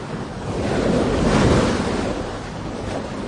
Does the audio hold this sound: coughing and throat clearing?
no